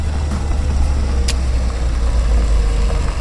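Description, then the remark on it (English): A car engine rumbles low and steady as the vehicle slows down along a road, with a brief sharp click partway through and no voices. “Let's slow up.”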